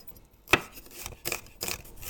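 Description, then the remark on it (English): A knife chops onion on a cutting board in a kitchen while nettle dandelion soup is being made: one sharp, crisp knock followed by a few softer, scraping cuts, fairly quiet, with no talking. “got our water boiling for the nettles, and we are chopping up our onion and dicing our garlic as we wait.”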